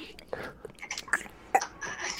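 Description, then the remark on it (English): Soft, muffled chewing: a short run of irregular wet smacks and crunchy mouth noises, quiet, made by a voice imitating someone eating. “Outside of the shot, we're hearing, like, this sort of muffled chewing noise, probably.”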